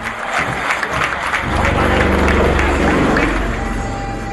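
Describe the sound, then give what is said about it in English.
A large crowd erupts in loud, sustained cheering and applause as helicopters fly a crisscross formation in the final helicopter display saluting Indian President Ramnath Kovind. A dense roar of voices and clapping swells after the first second and holds steady, with a low rumble underneath. “It's a crisscross formation and the crowd goes wild.”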